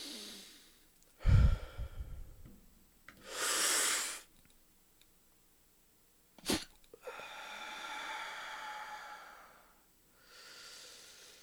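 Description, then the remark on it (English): Deep, slow breaths taken while gathering up the next hit: long airy inhales and exhales with pauses between them, plus a sharp snort-like catch partway through, with no talking. “And as I'm breathing profoundly, I'm gathering up my next hit.”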